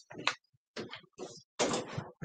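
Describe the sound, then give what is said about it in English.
A man opens a door with a series of rattling clunks and scrapes, four or five bursts of handling noise separated by short pauses, with no talking. “I hear him opening the door now.”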